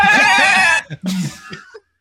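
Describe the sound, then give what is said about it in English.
A person loudly imitates a screaming goat, as in the game Goat Simulator, with a long, wavering, bleating cry, followed by a couple of shorter strained vocal bursts before trailing off. “You just got to hear somebody just scream like a goat.”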